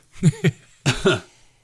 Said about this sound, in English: I just got a little cough.